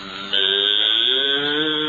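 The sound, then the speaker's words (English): A cow lets out a single long, steady moo that starts after a brief moment and holds at a strong, even level to the end, with no talking. “Get away from that cow. Is that a cow?”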